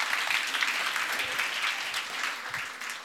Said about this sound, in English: Should we have another round of applause just to say, well done?